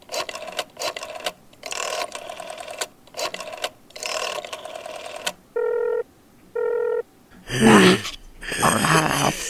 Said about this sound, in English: My mother picked up the phone and quickly dialed the Schwartz residence.